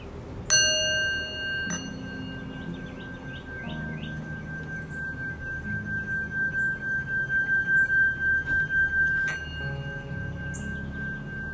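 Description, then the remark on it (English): A small singing bowl is struck a few times, each hit leaving a long, bright sustained ring that swells and wobbles in a slow pulsing rhythm before fading. No one speaks. “I'm gonna get the hang of that, my little singing bowl.”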